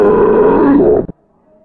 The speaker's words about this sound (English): Oh, Godzilla burp.